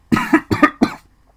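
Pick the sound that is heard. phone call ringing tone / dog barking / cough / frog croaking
cough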